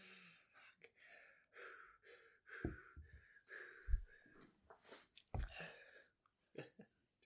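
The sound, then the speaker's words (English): People finish drinking their glasses after a toast: irregular gulps and swallows with sharp intakes of breath and a few low thuds, spread over several seconds with no talking. “I don't have much left, so while they're drinking their glasses.”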